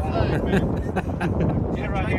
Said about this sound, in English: And it's windy.